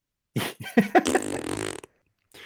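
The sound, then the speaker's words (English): A person blows a long, buzzy raspberry with their mouth, imitating a fart; it sputters for about a second and a half, then stops abruptly. “I make pretty good fart noises.”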